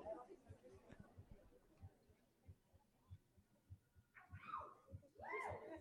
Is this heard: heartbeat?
yes